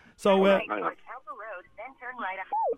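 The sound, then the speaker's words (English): A sat nav voice gives spoken directions, slightly tinny as if through a car speaker, with a short tonal chime at the end. “You're on the sat nav there, are you?”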